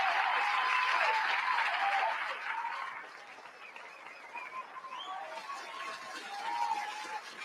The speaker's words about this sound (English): Listen, I worked hard for that applause, okay? I'm gonna fucking play that applause every show. The entire show.